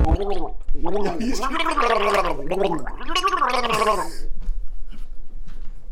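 Someone drinks water with the pinky raised and gargles it. A loud, bubbling, warbling throat gurgle with a wavering pitch runs for about four seconds before stopping and leaving near silence.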